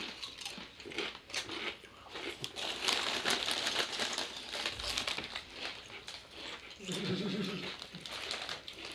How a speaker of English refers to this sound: Alright, this chewing is brought what to you they, by... What are they, roll gold? Cheddar roll golds? Just roll gold, I think, yeah, I don't know. But yeah, that's the sounds of a bunch of stoners munching on munchies.